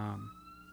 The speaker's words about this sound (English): Police, you hear the sirens. The police heard we were having this conversation.